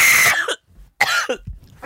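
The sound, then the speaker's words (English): Two harsh, loud coughing bursts separated by a brief pause, the second trailing into a short wheezy catch, as someone coughs after water went down the wrong pipe. “The water went down the wrong pipe.”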